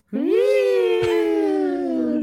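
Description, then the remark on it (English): A single wailing siren sound, one loud sustained buzzy tone that swoops upward at the start and then slowly sinks in pitch over about two seconds. “Do you have the siren sound queued up so we can play that?”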